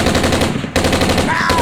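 Loud, rapid rifle gunfire rattles almost continuously, with one brief break midway, and a thin whistling tone rises faintly beneath the shots near the end.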